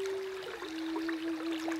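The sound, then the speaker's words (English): Steady, soft rushing of flowing river water with a bubbling wash across the highs, and a single sustained low tone held underneath the whole time. No one speaks. “for this haiku, I'm going to need like a Native American flute and a river.”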